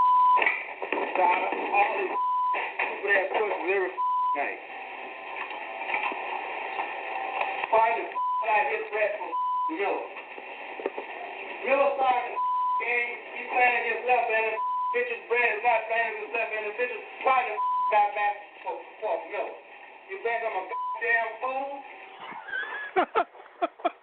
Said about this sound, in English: Oh, a shitload of beeps and F words. Oh, God, that's funny.